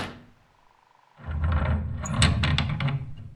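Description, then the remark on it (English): Big back doors rumble open after a brief quiet moment, with a low grinding slide and a few sharp clunks and rattles near the end, fairly loud. “Oh, the big back doors are unlocked.”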